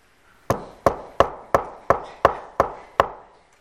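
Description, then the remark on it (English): Eight sharp knocks on a door in a quick, steady rhythm, each a hollow wooden rap with a short decay, and no voices alongside them. “Who's at your door?”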